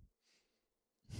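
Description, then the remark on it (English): A breathy yawn: a soft airy intake that fades, then a louder, rougher exhale at the end, with no talking. “another yawn.”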